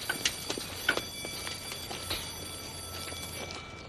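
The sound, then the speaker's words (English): A train in Chicago, ridden by the character Andy, rolls along with irregular metallic clacks over a steady mechanical hum and low rumble, heard at moderate volume with no one speaking. “Andy hops the train and just goes touring Chi-Town.”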